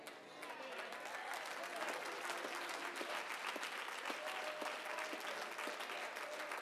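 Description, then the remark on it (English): An audience breaks into steady applause, a dense wash of many hands clapping that swells in the first second and holds at a fairly strong, even level with faint murmuring voices underneath. “Some of y'all barely applaud because you're not convinced of it.”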